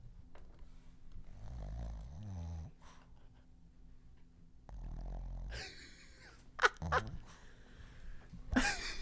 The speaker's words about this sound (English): Our dog is snoring. Our dog is snoring. You want to hear? 1 second. She might wake up.